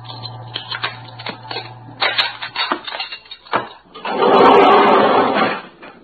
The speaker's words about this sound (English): I'm going to use the sword inside it to loosen the lock on the elevator door. If we can pry it open, the car will stop between floors.